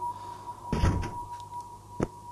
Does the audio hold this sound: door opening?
yes